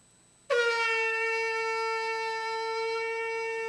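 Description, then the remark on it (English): A miniature shofar (ram's horn) blown in one long, steady, loud blast that starts abruptly and holds a bright, buzzy tone for about three seconds, with no talking over it. “give us a little sample of what the shofar is going to sound like.”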